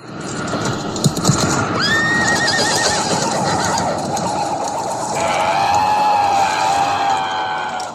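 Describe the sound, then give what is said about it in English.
A horse neighs loudly in a long, wavering whinny that starts high and trembles downward, set against a dense rumble of background noise with no speech. The horse comes crashing out of a wardrobe; the same stock sound is used in the film Crawl. “A horse comes out, and did it have a knight, or did it have like a weird creature that was riding?”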